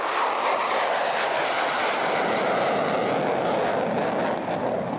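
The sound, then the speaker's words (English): Four F-35B Lightning fighter jets take off from RAF Marham in Norfolk, England, their engines roaring loudly and continuously, a dense, harsh rush of noise holding steady throughout with no voices. “When an F-35B Lightning jet takes off, you know about it.”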